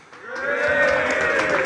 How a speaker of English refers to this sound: If you can give us a massive cheer...